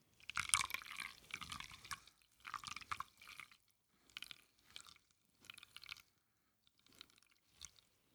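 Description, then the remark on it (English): The remaining water, roughly another 200, is poured in a steady stream over coffee grounds in a Chemex pour-over brewer. Then the sound breaks into intermittent trickles and drips as the coffee filters down through the grounds. It's quiet, with no one speaking. “And we're going to pour the remainder of our water in.”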